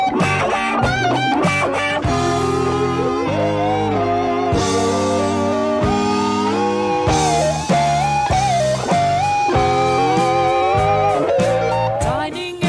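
A loud rock passage where layered electric guitars trade phrases, bright sustained lead lines answering thicker distorted chords over steady bass, with no vocals.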